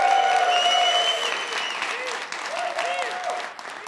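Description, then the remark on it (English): The attendees of the Smead Investor Oasis applaud steadily for about four seconds, a dense wash of many hands clapping at an even loudness that tapers slightly at the end, with a few faint tonal whistles or cheers mixed in. “We also have, hosting this alongside of us, standing here out in front of us, well, we can't see them, but they can see us, is the attendees of the Smead Investor Oasis, which we give a round of applause.”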